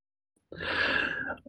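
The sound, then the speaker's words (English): Someone clears their throat once: a raspy, breathy rasp lasting about a second, with a rough low rattle underneath. It is fairly loud and stands alone, with no talking. “I'll put something out there after I clear my throat.”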